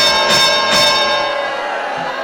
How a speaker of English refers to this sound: Did you mean to hit that bell, or was it supposed to be the booze? Just the booze. We had so much to drink, and hit two buttons. It was a mistake